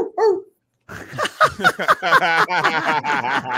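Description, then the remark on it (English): A dog barks once, then after a brief pause lets out a rapid, excited string of yapping barks and whines, fairly loud, with no people talking. “You have a dog?”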